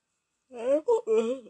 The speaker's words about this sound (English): It's like I was yawning and then I kind of like hiccuped. That was weird. That was really weird.